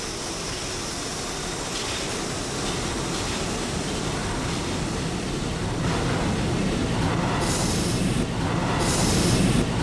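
A Brooklyn-bound Brooklyn Express subway train, next stop New Lots Avenue, rumbles steadily along the rails. It makes a loud, continuous roar with brief hissing bursts of high-pitched noise toward the end. No one speaks.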